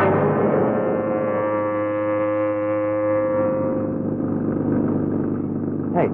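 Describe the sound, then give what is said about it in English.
An old taxi car engine runs steadily, a loud, droning hum with rough mechanical overtones that holds for several seconds before a brief sharp noise at the very end. “I said, where did you get this pile of junk? Out of a car museum?”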